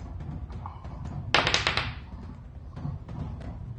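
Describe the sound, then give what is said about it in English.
A twelve-sided die is rolled for a sonic cannon attack in a tabletop game, tumbling across the tabletop in one short clattering burst and rattling for under a second before settling, over a low steady background rumble. “I'm going to have you roll a d12 on that sonic cannon versus Chinadu”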